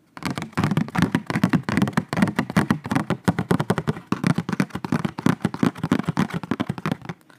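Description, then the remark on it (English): Rapid, steady tapping on paper, a dense run of crisp, papery taps that goes on for about seven seconds with no voices over it. “We can tap with the paper.”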